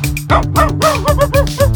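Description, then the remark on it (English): A person imitates a dog barking in a song, about six short, rhythmic arf-like yaps in quick succession, loud, over a steady musical backing. “I'm a fucking dog, baby. Man's best friend. Arf, arf, baby.”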